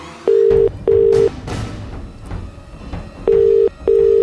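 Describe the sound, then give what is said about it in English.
A telephone ringback tone heard while calling, a steady low tone in paired double bursts, repeating after a pause over faint room noise. “I bet he won't answer the phone now.”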